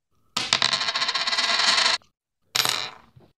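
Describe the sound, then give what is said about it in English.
A flipped penny, used to pick the Vikings–Saints football game, lands with a bright metallic clatter and rattles on a hard surface for over a second, then a second shorter ringing bounce fades out; fairly loud, with no voices. “The penny is trying to copy off your paper right away, also going with the Vikings.”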